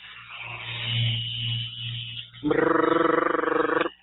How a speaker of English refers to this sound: So what is rapid release technology? For you guys that are out there on Periscope, you can see it. This is a rapid release. It's a vibrating machine. You guys can hear it out there.